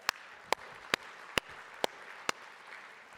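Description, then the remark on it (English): An audience applauds after high school freshmen (ninth graders) are called out: a steady wash of many hands clapping, with about six sharper, louder claps standing out at a fairly even pace over the continuous patter. “Some of you who are clapping are saying, I'm glad I'm not a freshman in high school any longer.”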